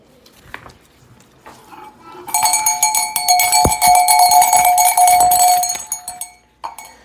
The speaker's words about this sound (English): "The only sound I hear," said Wendy, "is like a tinkle of bells." "Well, that's Tink, and that's the fairy language. I think I hear her too.